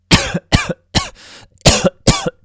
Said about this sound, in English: We have cough again, which is what I was doing just then.